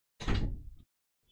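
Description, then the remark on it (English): A door swings shut with a solid thud, its low rumble fading over about half a second, followed by a faint soft knock. “Close my door, please.”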